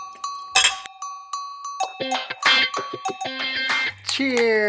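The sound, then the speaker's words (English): Several glasses clink together in a toast in a quick, uneven flurry, each tap leaving a bright ringing tone that lingers, with a voice joining in near the end. “Cheers. And also, welcome to the podcast, because our cheers are always epically a fail.”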